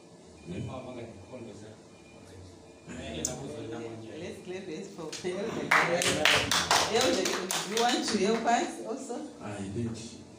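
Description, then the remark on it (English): An audience breaks into loud, rapid applause for an elder midway, many hands clapping in a dense burst that swells and carries on to the end. Voices can be heard talking before the clapping and beneath it. “Let's clap this for Elder.”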